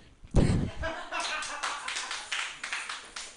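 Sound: door being opened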